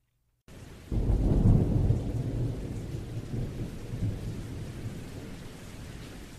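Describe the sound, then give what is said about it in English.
A deep roll of thunder rumbles up after a brief pause and slowly fades, while steady rain keeps pattering throughout a summer thunderstorm, with no voices. “The summer storm outside was nothing compared to the storm of anguish that prevailed among the media and the public when Rainbow's death was reported.”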